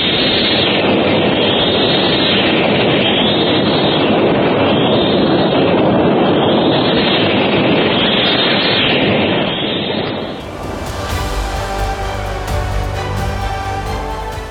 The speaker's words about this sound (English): An insistent hissing sound becomes audible. Goes louder! Louder! Suddenly, down through the opening in the ceiling, pour roaring yellow clouds of live steam. In an instant, the passageway is a seething, boiling cauldron of death.